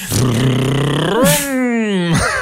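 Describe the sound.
A voice imitates a car engine revving, like a child pretending to make a car noise, with a buzzy, lip-trilled drone that climbs in pitch, briefly drops as if shifting gears, then rises again, loud for about two seconds.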